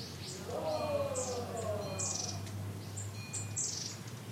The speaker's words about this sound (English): 6 a.m., walking the trails again. No one is out but quiet monks shuffling to one prayer ceremony or another. Birds giddily chirping. It sounded exactly like this.